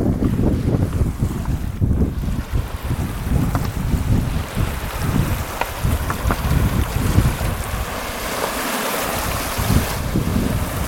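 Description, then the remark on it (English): Water laps gently and irregularly against the shore of a loch while steady wind rumbles across the microphone, making a continuous outdoor ambience with no voices. “And I thought it would be nice for you to hear the loch. So here we go. Just a little bit of ambience.”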